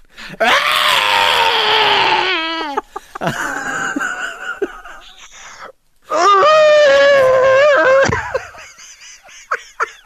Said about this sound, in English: I love the sort of the scream that they have of the creature. It's really good. Do it. Give us one. Give us the scream. That's where I just get lazy and insert a sound effect and you go, oh, that sounds amazing,